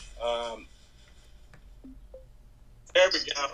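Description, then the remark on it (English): A phone call rings out with a short electronic tone burst, then a couple of faint blips during a quiet wait, before a voice cuts in loudly near the end. “So we're ringing him right now.”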